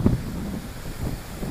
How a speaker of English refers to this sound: I definitely hear the wind.